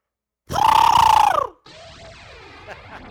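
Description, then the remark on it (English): A voice mimics an elephant's trumpet: a loud, buzzy, high-pitched blast held for about a second before sliding down, then a quieter warbling, swirling tone trails on. “That's my elephant.”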